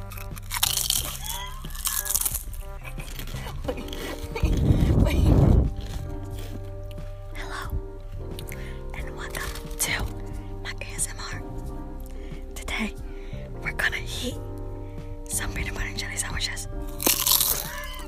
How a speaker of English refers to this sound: That's a crunchy ass peanut butter and jelly.